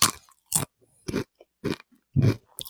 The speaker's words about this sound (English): I mean, it crunches like a regular Dorito, so I didn't get any cataclysmic crunch. Were you getting any seismic activity on your end? Nothing that registered on the Richter scale.